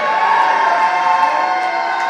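A large concert audience yells and cheers loudly in a sustained, dense roar, voting for which song the band should play, with scattered whoops rising above the steady wall of crowd noise throughout.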